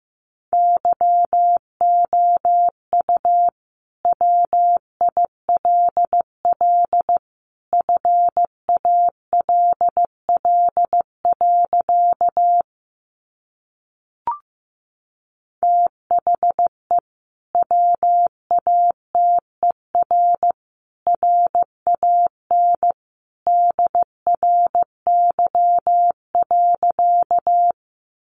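Morse code sent at 15 words per minute: a single steady mid-pitched tone keyed into crisp dots and dashes in grouped bursts, with a short silent break partway through and no voices.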